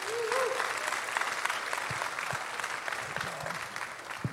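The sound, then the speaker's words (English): Steady audience applause, a dense wash of many hands clapping at an even loudness throughout, with a few faint voices and cheers mixed into the crowd noise, as a church audience welcomes the next speaker. “So go ahead and give it up”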